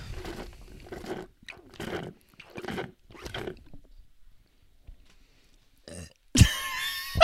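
A person makes a series of short, gulping vocal sounds in a steady rhythm, collecting air in the throat, followed after a pause by a sudden loud, rough burp as the air is released.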